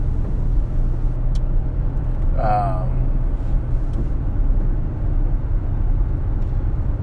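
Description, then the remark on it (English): Steady roar of cars passing by outside, a continuous low rumble of road traffic that fills the whole stretch, with a brief tonal wavering sound rising and falling partway through. “Come on, you stupid cars. That is annoying.”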